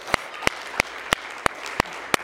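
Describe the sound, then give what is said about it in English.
An audience claps hands together in praise to God, seven sharp, crisp claps in a steady, even rhythm over a low background murmur, with no voices speaking. “Come on, let's give him one more hand clap of praise if you wouldn't mind, please.”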